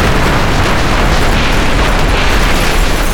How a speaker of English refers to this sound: Then the plane explodes.